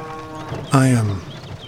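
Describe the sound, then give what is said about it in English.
A single short cow moo on a morning, loud, dropping in pitch over about half a second, then fading back into a quiet outdoor background. “The birds are singing, the cows are cowing.”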